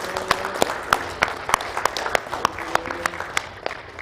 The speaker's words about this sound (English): Can we give a round of applause to those that accepted Jesus?